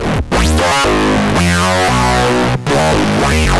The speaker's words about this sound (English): So hang on, is this, it's not an instrument, it's an effect, is that right? It's an effect, it's a distortion effect, baby. Oh wow, okay. Well, it sure sounds nice from that demo.